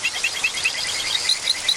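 Poison dart frogs of South and Central America call: a steady run of short, high-pitched chirps, about five per second, repeating evenly over a dense, hissing background of insect-like noise.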